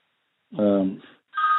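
Two short electronic phone keypad tones as a phone is switched off, a longer beep followed by a brief pause and a second, shorter beep, clear and fairly loud.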